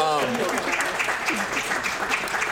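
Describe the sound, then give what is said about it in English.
An audience applauds for the speaker's wife with a steady, dense patter of many hands clapping for a couple of seconds, fairly loud and even throughout, with a brief voice heard at the very start. “You know, so yeah, claps for”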